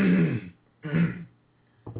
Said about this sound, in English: Let me clear my throat here.